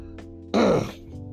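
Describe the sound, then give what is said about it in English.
A single loud cough bursts out abruptly, with a brief rough, voiced tail as it fades. No talking, only faint background hum around it. “Oh boy, here we go, this daggone cough.”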